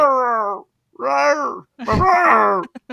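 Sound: cat vocalizing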